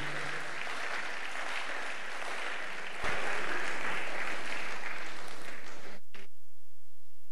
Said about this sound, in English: Yes, if you are clapping your hands, please do.